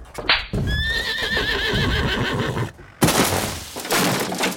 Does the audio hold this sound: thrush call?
no